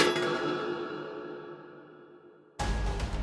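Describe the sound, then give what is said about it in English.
A hollow metallic clink of a penny shot into a slot in a wall rings out and hangs in a shimmering, slowly fading tone for a couple of seconds before a loud, dense burst of sound abruptly cuts in. “Then she heard a hollow clink.”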